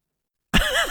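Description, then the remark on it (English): After a brief silence, a sudden loud nose blow bursts in, a wet, honking rush of air with a wavering nasal tone that lasts about half a second, as a person blows their nose near a microphone. “I'm blowing my nose. I'm trying to not get it on the mic.”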